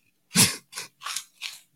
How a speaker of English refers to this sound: Are them fucking chips good, dog? I'm sorry. You can hear me chewing like a motherfucker. You smashing the motherfuckers, dog.